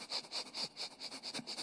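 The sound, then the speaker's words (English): A person imitates a dog sniffing: a quick, steady run of about eight short, breathy, hissing sniffs through the nose, fairly quiet, with no talking. “It's like a dog just sniffing.”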